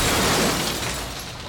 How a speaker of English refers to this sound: Oh, no! The balloons! They've cracked the top of the bubble!